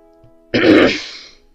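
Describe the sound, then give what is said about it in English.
One sudden, harsh, loud cough bursting out of near silence and rasping off over about a second, with no talking around it. “… coughs.”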